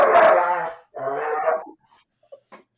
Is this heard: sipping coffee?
no